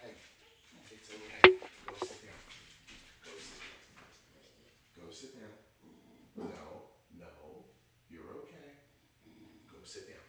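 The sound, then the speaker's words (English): One sudden, loud bark from Basil, an older pet dog that never barks, rings out early on, followed by quieter muffled voices and shuffling sounds for the rest of the moment. “Is that basil that or was, is that the dog that was, never barks? That was the dog that never barks.”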